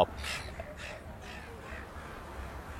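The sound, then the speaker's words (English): Harsh, raspy seagull cries ring out three or four times in quick succession, loud, over a steady low outdoor rumble, as an aggressive seagull attacks a girl. “some girl's being attacked by a seagull.”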